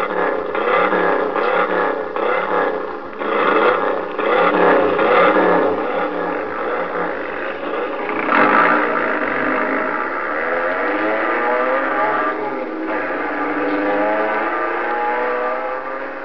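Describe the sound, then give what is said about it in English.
Loud, continuous roar of racing car engines in a race over a bridge, revving and shifting pitch as they surge up and down, with a whirring, clattering mechanical edge and no voices. “But what Bobby is going to do, that race over the bridge with David, both of them can be killed. The way they handle those cars, you don't know.”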